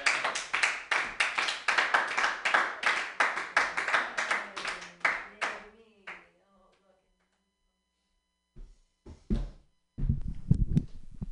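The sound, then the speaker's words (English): An audience claps for a performer about to do a quick set, in a quick, steady rhythm for about five seconds before the applause fades out, leaving a short silence and then a few brief voices. “Okay, clap for me.”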